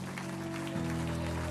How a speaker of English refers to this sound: If you believe God's going to do it, why don't you clap your hands and shout?